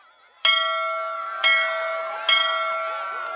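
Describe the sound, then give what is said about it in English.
A bell rings out with three loud strikes about a second apart to start a race, each bright metallic tone lingering and overlapping the next as it slowly fades. “She was jogging in place like a boxer waiting for the bell to ring. A minute later, it did.”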